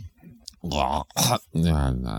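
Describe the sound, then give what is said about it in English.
A voice mimics someone snorting up mucus: throaty, gurgling vocal sounds with one harsh, noisy sniff-like burst in the middle, fairly loud, with no other sounds around it. “Somebody's snorting up some mucus.”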